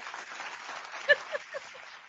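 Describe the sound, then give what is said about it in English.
An applause sound effect: a short burst of crowd applause, a dense patter of many hands clapping with a brief louder swell near the middle, lasting about two seconds with no voices. “You got the claps.”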